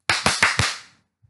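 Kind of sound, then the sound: human body sound, hand claps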